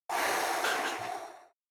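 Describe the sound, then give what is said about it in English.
A single heavy, forceful breath from a woman, loud, a rough airy exhale lasting over a second before cutting off, with no talking. “She's breathing through it because she knows it's going to power you up.”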